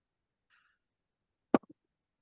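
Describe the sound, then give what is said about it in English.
A sharp clatter of gilded gold dice, rolled for a persuasion check, landing on a hard surface, followed by two quick smaller bounces as they settle, fairly loud against near silence, with a faint rattle just before. “We're going to use the gold dice.”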